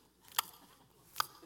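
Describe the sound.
Two sharp, wet mouth smacks about a second apart, fairly loud, a voice imitating a woman in church noisily smacking her gum, with quiet background between them.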